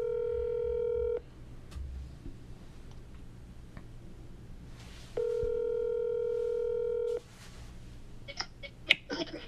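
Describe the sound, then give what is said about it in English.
An outgoing call rings on the line: two steady, buzzing ringback tones, each about a second or two long, separated by a long pause, followed by a few faint clicks. “My boy, I'm glad you answered the phone.”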